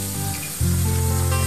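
A loud, steady hiss of escaping air from a vehicle's tire blowout in Southeast Asia, rushing continuously over a low droning rumble that grows stronger about halfway through. No voices.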